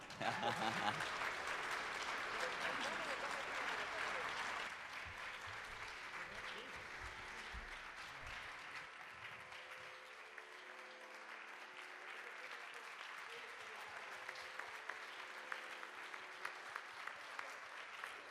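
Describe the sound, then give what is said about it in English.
Sustained audience applause from a standing ovation, a dense wash of clapping that runs loud and steady throughout, easing slightly after the first few seconds, with some crowd voices mixed in. “They truly deserve this standing ovation, and of course, maybe another round of applause.”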